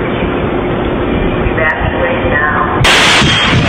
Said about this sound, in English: That explosion happened apparently out of an RV downtown Nashville moments after this message played.